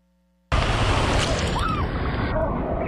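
After a moment of silence, loud rushing whitewater rapids of the Arkansas River in the Royal Gorge, Colorado, suddenly roar in, a dense, continuous churning wash that holds steady to the end.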